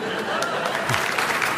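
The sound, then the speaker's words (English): Audience applause for a line quoted in Italian, before it is translated: a steady, dense wash of many hands clapping at an even loudness throughout, with a faint murmur of voices mixed in. “As does applauding them before they've been translated.”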